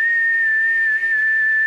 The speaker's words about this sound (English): That whistle had a lot of heart this time.